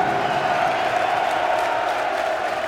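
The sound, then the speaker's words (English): A large sellout football stadium crowd roars and cheers in a dense, steady wall of voices that holds at a constant loud level throughout, with no single voice standing out. “Crowd in good voice.”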